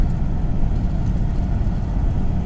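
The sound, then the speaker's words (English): A steady, loud roar of a car driving with its windows down on a warm day of about 25 °C, heavy low wind buffeting and road rumble filling the whole stretch with no one speaking. “So windows down, which means really noisy”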